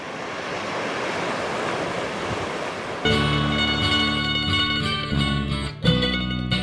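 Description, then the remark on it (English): A steady, rushing wash of ocean surf fills the first few seconds on its own, then music with sustained tones comes in and plays over the continuing waves. “Sing on, the waves are waiting on your song.”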